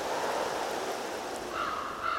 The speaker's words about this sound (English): Every place has a sound. A passing breeze that indicates a weather change.